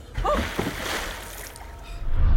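A heavy splash into river water, followed by churning and sloshing that fades, then a low rumble swelling near the end. The sound is fairly close and moderately loud, with no voices.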